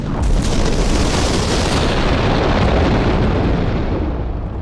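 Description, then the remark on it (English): A loud gas explosion from a train crash: gas from cylinders hung beneath the front coaches of an older, gas-lit mail train ignites on impact, erupting at once into a heavy, sustained rumbling roar that fills the whole clip, its crackling high end slowly fading while the low boom continues. No voices. “This gas ignited on impact.”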